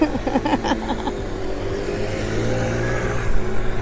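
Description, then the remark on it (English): A motorbike engine revs loudly and steadily, its droning pitch climbing slightly as it passes, with a few brief clattering knocks at the start. “You got to watch out for motorbikes.”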